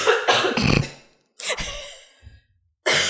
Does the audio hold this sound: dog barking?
no